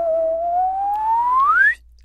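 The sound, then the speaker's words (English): A slide whistle plays one loud upward glide, rising slowly at first and then quickly, before cutting off abruptly after under two seconds. No voices accompany it. “Slide whistle.”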